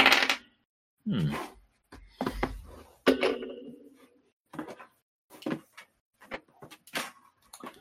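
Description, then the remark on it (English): Small hard objects clatter and tumble across a surface in a series of short, sharp knocks and rattles as dice are rolled for a scouting roll, with brief gaps between bursts. “Okay, all those dice, but you got one. Yep. All right, let's see what we get here.”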